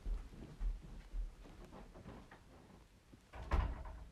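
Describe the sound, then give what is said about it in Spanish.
A door that a pet named Pollock had opened is pushed shut after a few seconds of quiet shuffling and handling noises, ending in a single solid thud. No one speaks. “Ay, espérenme un segundo, tengo que cerrar la puerta y tengo que hacer muchas cosas porque Pollock vino a abrir la puerta como si fuera el rey de este lugar.”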